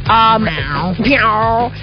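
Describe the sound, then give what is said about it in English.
A person on The Big Party Show, an Omaha radio show, playfully imitates a cat's meow, a drawn-out, sliding voiced call that rises and falls twice, fairly loud, with no other sounds around it. “Meow.”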